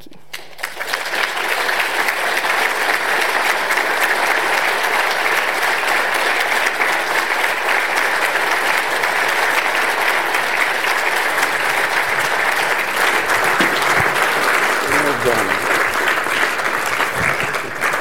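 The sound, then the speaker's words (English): An audience claps steadily for about eighteen seconds, a dense, even wash of many hands that holds at a loud level throughout, with a few faint voices near the end. “A wonderful round of applause and fully deserved.”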